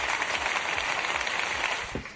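A round of applause: a dense, steady patter of many hands clapping together, fairly loud and unbroken for about two seconds before thinning out at the end.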